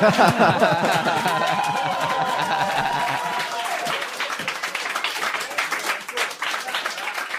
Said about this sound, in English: Always good when it ends on an applause break.